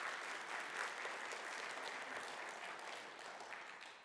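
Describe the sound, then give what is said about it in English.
An audience applauds for the absent Tommy, a dense wash of many hands clapping at an even, sustained level for several seconds with no voices standing out. “He's not here, but clap loud enough to hear you in Florida, okay?”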